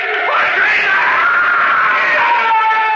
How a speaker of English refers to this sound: He began to scream. But then, after a while, he was silent.